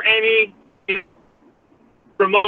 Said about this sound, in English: Now, I'm going to let you go because you're breaking up. Yeah, you're breaking up, so I'm going to put you back into the audience, but no.